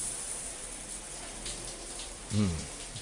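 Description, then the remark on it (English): Steady, soft hiss of running shower water spraying continuously in Elon's shower, fairly quiet and even throughout, with a brief murmur of a voice near the end. “want to go into Elon's shower?”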